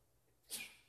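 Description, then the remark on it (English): A single quick sneeze bursts out midway, a sharp hissing blast that fades off fast, with no talking around it. “Bless you. Bless you.”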